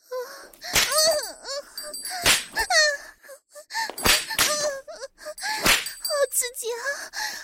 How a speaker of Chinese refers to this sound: 我从村头一直驮着你的柴草，现在距离你家还有很远，我已经爬不动了，你快用鞭子抽打我的屁股，让我打起精神。